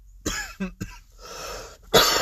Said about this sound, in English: Excuse me, I was coughing at the fact of how fucking crazy this is.